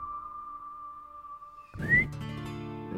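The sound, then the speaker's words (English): A man, one of three men holding rifles at the end of a small canyon, whistles: a steady, thin tone held for over a second, then a short upward-sliding whistle as a fuller rumbling sound swells in around it. No one speaks. “One of them whistles.”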